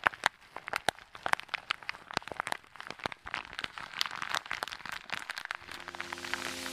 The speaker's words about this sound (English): So from tapping. Chewing, scratching, crinkling,